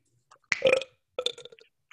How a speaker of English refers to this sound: It's like my attraction thing. So I attract females. Oh, like my burping? Yeah, it's my mating call.